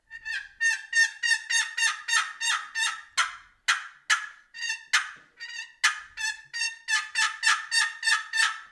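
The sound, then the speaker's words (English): A turkey call imitates an excited hen yelp, with a couple of cuts thrown in: a fast, loud run of yelps, about two sharp raspy notes per second with a couple of brief pauses, and no talking. “Something like that would be an excited hen yelp.”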